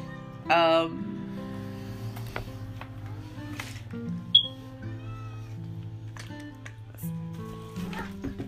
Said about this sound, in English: Sorry, I got a little cat that's freaking messing me.